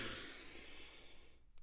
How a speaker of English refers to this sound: We didn't do our breathing. I'm so sorry. Okay, we're going to inhale through our nose.